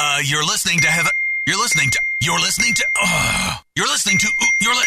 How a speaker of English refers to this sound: can you please silence your phone for one friggin' minute so I can get this done?